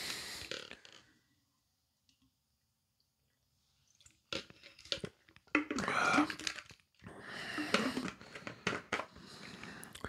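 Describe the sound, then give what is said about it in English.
After a brief sound and a few seconds of silence, someone drinks water: a run of wet gulps and swallows, moderately loud, ending with a satisfied exhale and mouth noises. “Need a drink of water. Hold on.”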